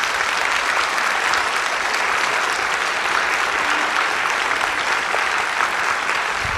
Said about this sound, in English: Can we give them another huge round of applause, please?